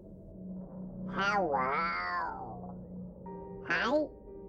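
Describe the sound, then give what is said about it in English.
A cat named Max meows loudly and insistently downstairs at night: a long drawn-out, wavering cry followed after a pause by a shorter, sharper meow, over a low steady hum. “Downstairs, clear as day, he cried out.”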